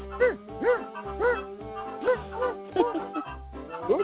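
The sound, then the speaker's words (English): A seeing-eye dog barks steadily, about eight sharp woofs in quick, regular succession, fairly loud, over a low background hum. “He's got a C&I dog right there.”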